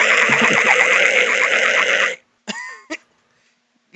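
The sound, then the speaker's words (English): A loud, raspy human victory screech held for about two seconds with a warbling, strained pitch, then cut off, followed by a couple of short yelping bursts and silence. “That was crazy, man. That was victory screech.”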